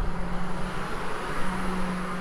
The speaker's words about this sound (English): I was going to let that bus pass. Sorry about that.